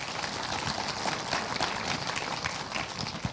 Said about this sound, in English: So let's have a COVID-compliant round of applause